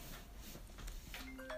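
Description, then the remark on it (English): A phone call ringtone starts partway through: steady electronic tones enter over a low background hum, with a brighter high beep sounding at the very end. No one speaks. “We got phone calls, y'all.”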